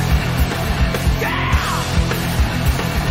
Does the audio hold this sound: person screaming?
yes